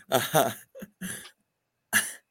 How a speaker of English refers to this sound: Wait, I'm going to catch COVID over the goddamn microphone if you keep coughing. I'm sorry.